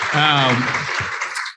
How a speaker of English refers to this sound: Yeah, we can yep. clap for that.